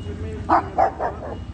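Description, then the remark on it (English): A dog, Jose's dog, gives four quick barks in a row as it comes up behind someone, the first ones strongest and the last trailing off softer, over a low steady background rumble. “Oh, you have a dog coming up behind you.”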